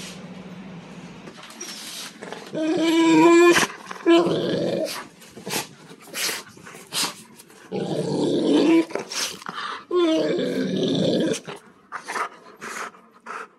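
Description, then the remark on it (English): A dog makes a series of contented grunts of bliss and low, throaty growl-like moans in uneven bursts, with short breathy pauses between them and no talking. “He also makes the most adorable grunts of pure bliss, and I've included the link to a video in case you are willing or able to play that.”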